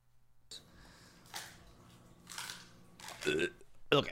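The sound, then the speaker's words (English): A husky dog crunches on a chicken foot, with several wet, crackling bites arriving in irregular bursts and short pauses between them. “He's crunching up a chicken foot.”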